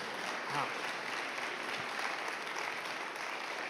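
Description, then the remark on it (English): A steady round of applause from many hands for a painting that serves as the backdrop for a Lent sermon series. A dense, even crackle of clapping holds at a constant level for several seconds without fading. “How about a round of applause for this painting?”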